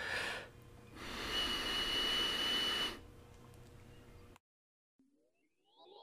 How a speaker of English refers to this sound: Hey, DW and Co Radio, you want to hear my nose whistle?